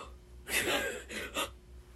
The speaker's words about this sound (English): Gasp. Yeah, no. I was fucking surprised